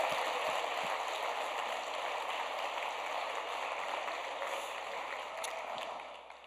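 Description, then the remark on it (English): An audience at a JavaScript event applauds the speakers and MCs, a dense wash of many hands clapping at an even, sustained level for several seconds, with no voices rising above it. “Round of applause to them.”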